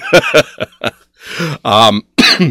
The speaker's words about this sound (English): as you can tell by my slight cough, it's recovering from the con,